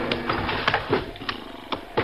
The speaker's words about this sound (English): the unmistakable thud of horses' hoofs and the turning of wheels over the gravel road